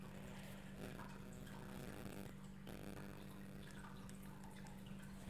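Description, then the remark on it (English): A small waterfall fountain trickles steadily in the background, a soft continuous splashing wash of water with a low hum underneath and no voices. “If you guys hear like a little waterfall in the back, it's because.”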